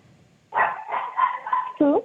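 Dogs barking: a drawn-out, wavering yowl that runs for over a second, then one short, sharp bark right after, fairly loud and with no talking.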